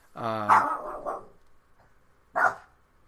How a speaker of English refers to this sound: And started barking incoherently. He's barking again.